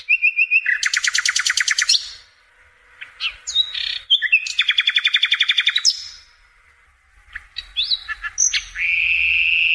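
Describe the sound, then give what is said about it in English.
A common European nightingale sings loudly, alternating rapid rattling trills with sharp whistled notes and a long pure tone, separated by brief pauses; no voices. “Now, there are two species of nightingale, but I assume that's your common European nightingale.”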